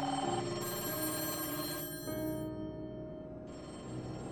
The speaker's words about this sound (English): Over the next 19 days, Berkeley's PD phones were ringing off the hook, all with tips on who had taken Christine.